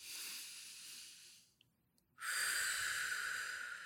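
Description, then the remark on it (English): Deep breathing during a meditation: a long, airy exhale fades into a brief pause, then a loud, steady inhale draws in sharply and continues to the end. No one speaks. “We can start this meditation by just taking a couple of deep breaths and just inhale and exhale. And we can do a couple more. Inhale. One more. Inhale.”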